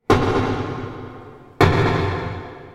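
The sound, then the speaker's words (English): Underwater pile driving: two heavy, booming strikes about one and a half seconds apart, each hitting suddenly and then fading in a long, rumbling decay. No voices. “Here's what pile driving sounds like when you record it that way. Water muffles the sound, so as a human listening to this, it probably doesn't sound so bad, right?”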